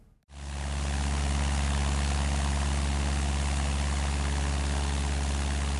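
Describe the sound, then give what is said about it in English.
A small propeller plane's engine drones steadily in flight over Yellowstone National Park, the plane flown by its pilot alone with no co-pilot, a loud, continuous low hum with a buzzing harmonic texture that starts abruptly and holds constant throughout, with no voices. “He's literally operating the plane in the air.”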